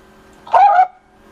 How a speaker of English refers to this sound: I think somebody's dog has an opinion on some trade rumors.